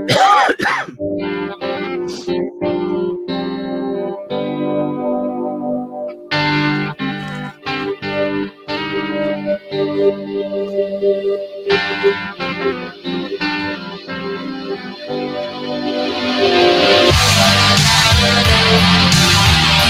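A recorded rock song plays on its own, with a sustained sung vocal over distorted guitars and punchy drum hits, swelling into a louder, denser wall of sound near the end.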